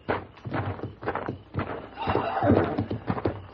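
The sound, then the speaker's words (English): Hooves clip-clop in a steady, uneven rhythm as horses move, and partway through a horse lets out a shrill, wavering whinny over the hoofbeats. “Listen. The horses, there's somebody out there.”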